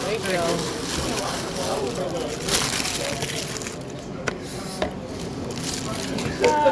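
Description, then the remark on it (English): Food is poured on top of another batch to combine them, a steady rustling, crunchy slide lasting several seconds, punctuated by a few soft knocks and clatters near the end. “Pour it on top?”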